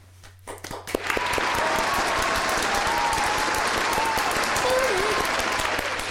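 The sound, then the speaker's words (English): A crowd breaks into a sustained round of applause, dense clapping swelling up after a brief pause and holding steady and loud, with faint voices and a whistle-like tone drifting underneath. “If you haven't already, please give a warm round of applause for fellow roommate”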